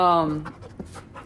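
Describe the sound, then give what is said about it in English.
A dog pants rapidly and excitedly in a living room as someone comes home from a walk, a series of quick breathy huffs following a short tonal whine-like sound at the start, all within about a second. “He just walked in from a walk. The dog's going crazy here.”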